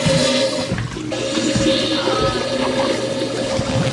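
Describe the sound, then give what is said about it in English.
A toilet flushes with a loud, steady rush of swirling water that fills the whole span, turbulent, with no voices over it. “Look, I have toilet too. Listen, we have toilet.”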